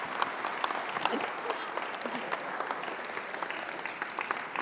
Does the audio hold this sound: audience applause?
yes